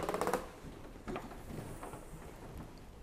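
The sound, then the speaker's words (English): The carriage of a hand-cranked wooden printing press rolls forward under the platen as its crank, called a rounce, is turned, with a brief rattling clatter, then a few soft knocks and creaks at uneven intervals, quiet with no voices. “Then the carriage assembly was advanced under the platen, which is the part that does the printing, by turning this crank called a rounce.”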